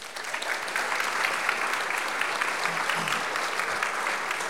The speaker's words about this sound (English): Round of applause.